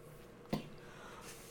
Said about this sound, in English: Besides for your cough.